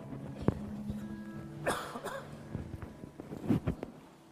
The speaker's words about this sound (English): since I've got a great cough.